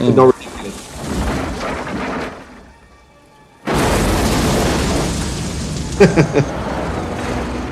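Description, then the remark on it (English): A truck falls upside down into a river and explodes into a mushroom cloud: a sharp impact fades to a brief lull with faint tones, then a sudden, loud, sustained roar erupts, punctuated by a few sharp bursts near the end. “Is that the truck falling upside down into a river that explodes into a mushroom cloud?”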